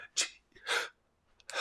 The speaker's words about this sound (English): Sorry, hard time breathing.